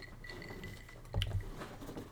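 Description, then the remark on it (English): A single bright clink of glasses touching in a toast of a piña colada-flavored drink served on the rocks rings out midway, with a soft low thump and faint rustling around it against a quiet background. “We'll go ahead and try it right now. Clink.”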